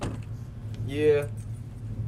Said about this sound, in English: Isn't that George's truck? Hmm? Yeah, there's no mistaking that fire red truck. It's George's all right.